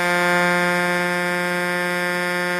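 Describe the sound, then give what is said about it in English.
A loud truck-style car horn sounds in one unbroken blast lasting a few seconds, a brassy, steady low-pitched blare rich in buzzing overtones, with no one talking over it. “Let's hear your horn.”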